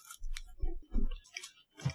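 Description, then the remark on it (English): Wet, crunchy chewing of candy eaten two pieces at a time, several bites and mashing sounds in an uneven rhythm, with clicky and sticky mouth noises; no talking. “What everyone wants to listen to, chewing.”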